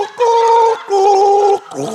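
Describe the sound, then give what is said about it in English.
A person gargles a tune, two long sustained bubbling notes at steady pitches with a short break between, then a lower, shorter gargle starting at the end. “Can white people not gargle?”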